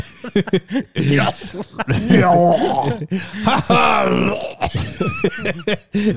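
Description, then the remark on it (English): Ed McMahon mimics retching and gagging, with several loud, strained, drawn-out heaves broken by short gasps. “Ed McMahon just puking.”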